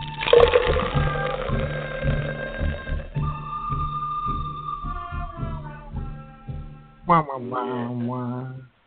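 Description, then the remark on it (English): A man pours beer into a glass in a steady, bubbling rush under bright ringing tones, then a short burst of voice follows near the end. “Whenever he pours that beer, it makes me thirsty.”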